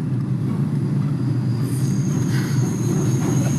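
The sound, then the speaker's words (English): A train rumbles steadily through Grand Central Station, a heavy low-frequency roar with faint metallic wheel squeal rising above it, loud and continuous with no voices. “I have just checked into Grand Central Station.”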